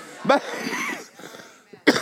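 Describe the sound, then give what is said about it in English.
Two sharp coughs, one near the start and another near the end, with a brief stretch of murmured voice and breathy sound in between. “As I cough.”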